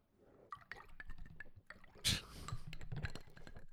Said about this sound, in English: This has been the sound of water pouring.